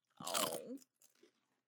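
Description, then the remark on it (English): A loud crunch of spicy Szechuan potato chips being bitten by several people in sync, a dense crackling burst, followed by a few softer crunching chews that fade out. “You guys have the synchronized crunching.”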